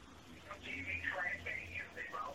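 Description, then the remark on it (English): Someone snorts and snuffles into a telephone during a call to a Holiday Inn hotel, the nasal, wordless noises tinny and band-limited, running continuously for a couple of seconds at a moderate level. “I didn't know if you were done snorting on the phone.”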